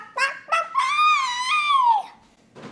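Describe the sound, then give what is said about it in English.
A voice imitating a chicken: two quick, clipped clucks followed by one long, drawn-out squawk that bends downward at the end, loud with no other sound around it. “How was that chicken goodbye? The chicken goodbye was fantastic. Bawk, bawk, bawk, bawk, bawk.”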